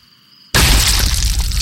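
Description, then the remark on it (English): After a faint humming lull, a violent burst erupts as a chest explodes outward and an arm tears through bone: a loud, crunching, bone-breaking rupture that keeps tearing and cracking in a dense, harsh wash until the end. “And his chest exploded outward, spraying the skeleton with blood as a white sheeted arm tore its way through fragments of bone.”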